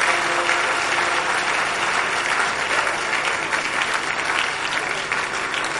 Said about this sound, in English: Let's clap and give God a mighty praise in her.